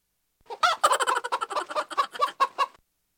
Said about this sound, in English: Did you just have a chicken and a chipmunk laughing at me? I don't appreciate that.